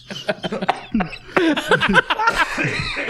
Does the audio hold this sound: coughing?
yes